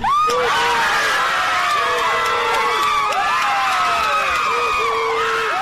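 A large outdoor crowd outside a heavily fortified and guarded courthouse erupts in loud, sustained cheering at the announcement of the jury's guilty verdict on all three counts against former police officer Derek Chauvin, with overlapping shouts, whoops and high-pitched screams swelling together continuously, dense throughout.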